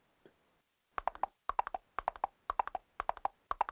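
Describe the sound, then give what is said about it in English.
Horse hooves clip-clop in a steady, quick rhythm, sharp knocks grouped in rapid bursts after a brief faint tap at the start. No voices. “Uh-oh, he brought his horse.”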